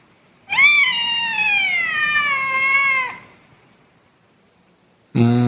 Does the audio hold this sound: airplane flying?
no